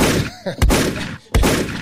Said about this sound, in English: Gunshots.